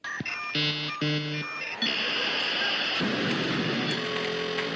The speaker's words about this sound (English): The 56K modem.